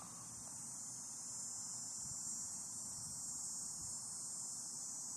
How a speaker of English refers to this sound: Unless you count the cicadas, which I do not. For if they have political opinions, I have no way of knowing.